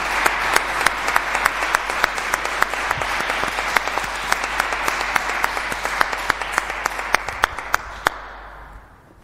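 An audience at a church service applauds after a baptism, many hands clapping in a dense, even wash with a few sharper individual claps standing out, sustained for several seconds before tapering off at the end.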